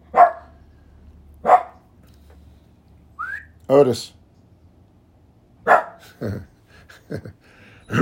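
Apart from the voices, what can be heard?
dog barking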